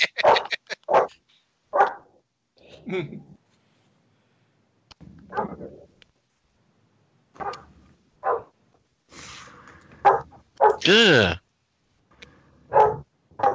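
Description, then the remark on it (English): A dog barks in short, scattered bursts, some sharp and some muffled, with a drawn-out whining yelp near the end, moderately loud. “I heard the dog.”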